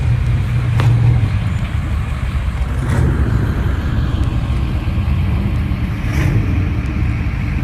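A bus starts moving along the road with a steady, heavy low engine rumble that stays loud and continuous throughout, broken only by a few faint knocks, with no voices.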